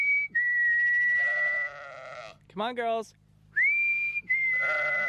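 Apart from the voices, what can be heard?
sheep bleating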